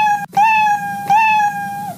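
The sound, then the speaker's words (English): A cat meows loudly, two long drawn-out yowls in quick succession, each sliding up in pitch before holding a steady wail, with no talking. “Here comes the kitty litter.”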